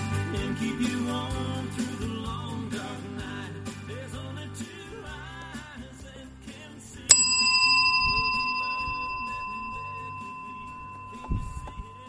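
Soft music fades out, then the big bell in Sal is struck once, loud, its bright ringing tone lingering and slowly dying away over several seconds.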